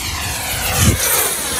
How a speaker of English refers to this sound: A model jet plane taxis and then soars into the sky with a rumble.